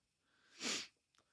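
sniffing

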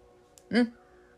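crow cawing

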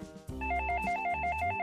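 telephone ringing

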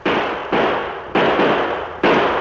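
gunshots

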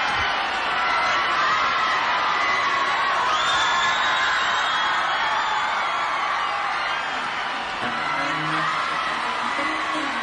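crowd cheering and whooping

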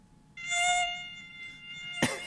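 mosquito buzzing

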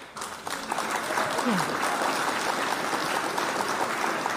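applause sound effect

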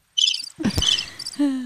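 cricket chirping sound effect

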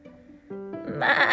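goat bleating

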